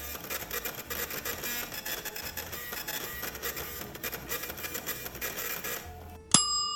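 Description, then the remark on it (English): A food printer aboard a ship prints a meal of Thai chicken curry and rice: a steady mechanical whirring and buzzing runs for about six seconds with rhythmic fluttering, then stops and a bright chime rings out at the end. “Your meal is being printed.”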